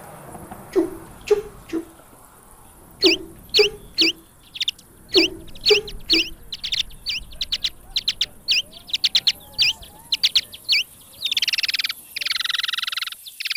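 Bat echolocation chirps, a rapid run of short downward-sweeping frequency-modulated pulses in irregular bursts, closing with a dense buzzing flurry. Clear, with no voices.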